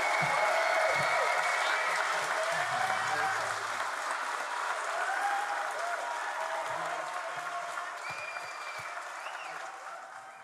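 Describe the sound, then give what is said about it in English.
A live crowd in Boston applauds steadily, a dense wash of clapping with scattered cheers that holds strong and fades slightly toward the end. “Thank you, Boston. Thank you. We love you. Great crowd.”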